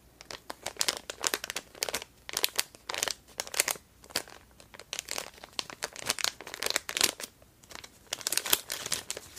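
A bag or packaging crinkles and crackles in quick, irregular bursts, bright and papery, with brief pauses between handfuls of rustling. No voices, just the steady crunch of plastic being handled.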